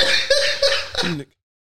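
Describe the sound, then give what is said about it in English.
A loud coughing fit from someone who is sick: about four harsh, rapid bursts in a row, blurring into laughter, then cutting off into silence. “I hate that I can't laugh because it's just all coughs.”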